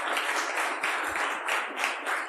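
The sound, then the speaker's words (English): An audience applauds the organizations that helped out, a dense wash of many hands clapping at once with no single claps standing out, holding a fairly even, moderate loudness throughout with no voices. “So we just give a huge round of applause to all these great organizations that helped us out.”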